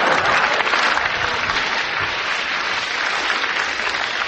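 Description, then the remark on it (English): An audience applauds steadily for several seconds, a dense, even wash of clapping hands that stays loud throughout with no voices standing out. “Oh, come on, you've got a round of applause.”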